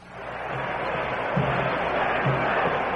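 A huge crowd of more than 55,000 at Briggs Stadium in Detroit roars during the fourth quarter of a football game between the Detroit Lions and the Cleveland Browns, a steady, dense wash of noise that swells slightly and holds loud throughout, with no individual voices standing out.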